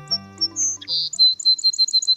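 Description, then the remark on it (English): A song sparrow sings a bright phrase: a few sharp introductory notes and a buzzy burst, then a rapid run of high trills, clear with no talking. “The Song Sparrow, a humble little bird with a big role in history.”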